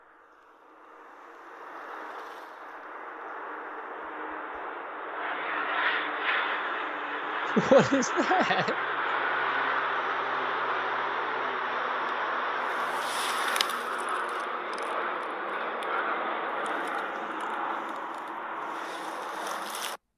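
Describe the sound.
A low-flying airplane's engine roar swells in after a couple of seconds as it passes back and forth no more than 100 feet over the treetops, not spraying anything. It holds as a steady, broad rumbling drone to the end, with a voice briefly asking a question partway through.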